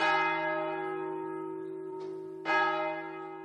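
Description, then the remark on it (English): A large monastery prayer bell, at the monastery next to Cistercian College boarding school in Ireland, tolls twice to call the monks to prayer, each deep, resonant strike ringing out and slowly fading, the second stroke arriving after a long pause. No voices are heard. “And the first bell calling the monks to prayer is rung at 4 o'clock in the morning.”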